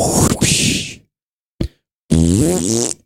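Three loud fart noises with no talking: a long, raspy, hissing blast, a short sharp pop, then a buzzy, wobbling one whose pitch rises and falls.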